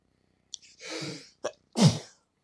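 A loud sneeze: a sharp intake of breath and a breathy build-up, then a brief catch and an explosive burst at the end, part of a sneezing fit. No one speaks.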